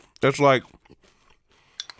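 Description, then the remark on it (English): Chewing of crunchy Raisin Bran Crunch cereal with almond milk: a short voiced hum, then soft scattered mouth clicks and a sharper crunch near the end. “We got a little crunch in there.”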